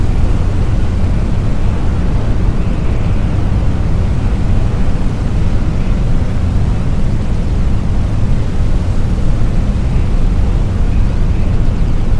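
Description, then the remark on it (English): A sustained, powerful roar of rocket engines during launch ascent as the rocket reaches the atmosphere, 30 seconds before main engine cutoff and primary separation. Loud, with dense rumbling low-end that stays steady and unbroken throughout, no voices present. “Atmospheric reach achieved. 30 seconds to main engine cutoff and primary separation.”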